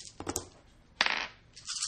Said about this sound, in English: He rolls all the dice.